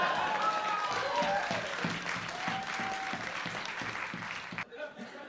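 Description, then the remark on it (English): A crowd applauds steadily for several seconds, a dense wash of clapping with a few whistles, before tapering off into quieter scattered claps near the end. “Hey, I got applause for that.”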